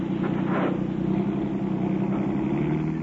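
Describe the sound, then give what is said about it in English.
A car engine runs loud with a steady, throbbing low rumble, holding an even drone as the car pulls forward over a man lying in front of it. No voices are heard. “Well, we're not gonna back out. We'll run over him.”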